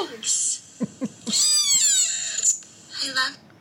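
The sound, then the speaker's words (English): A tiny cat named Wisp meows several times in quick succession in a TikTok video being played, high-pitched, wavering cries with short gaps between them, fairly loud with no one talking over it. “Wisp is the scrungliest little cat I've ever seen.”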